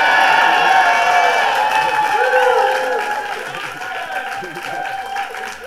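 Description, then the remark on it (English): A large crowd claps and cheers steadily, a dense roar of applause with scattered whoops rising over it, loud at first and tapering slightly toward the end. “It says here, extra pause for applause.”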